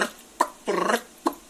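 A turkey hen clucks in short, sharp single notes, with a brief rolling, fluttering purr between them; three clucks and one purr, moderately loud, no talking.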